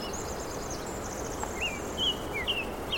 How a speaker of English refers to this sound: The dawn chorus is this amazing phenomenon where all the birds essentially wake up at the very first pre-dawn light.